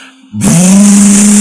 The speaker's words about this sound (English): I'm sorry, what the fuck? Revving up the moped. I can't take this.